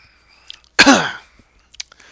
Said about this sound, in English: Yeah, there's the blueberry flavor and the smell. Let's give it a sip here, guys. If you have your own at home, crack it open and enjoy.